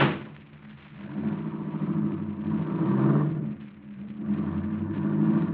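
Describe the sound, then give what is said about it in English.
A car engine rumbles steadily, then revs up in two strong surges as the car pulls away, its deep drone swelling and falling, with no voices. “Then you better slip over here and drive this car.”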